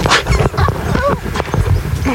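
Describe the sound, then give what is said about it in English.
A person imitates a dog, giving several quick barking and yipping noises in a row, loud, mixed with some vocal whines. “Oh, my new ringtone is just going to be an edit of all of your woof woof.”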